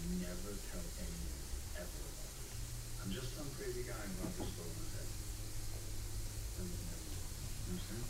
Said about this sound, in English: Wow, you can actually hear the water. Yep. I was like, are we getting static from something? Like, the white noise.